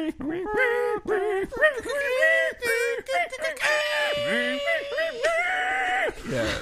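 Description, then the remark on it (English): A voice imitates a horrible screeching swarm described in a book, with loud, wavering shrieks and warbling cries that rise and fall for several seconds in a continuous, nightmarish stream. “I tried to hum it, and I could not, like, come up with something that sounded, like, horrible and as bone-rattling and soul-screeching as it was described in this book.”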